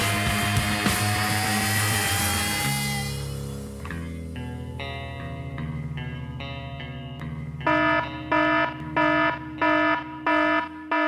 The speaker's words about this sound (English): You hear those sirens? You know what that means.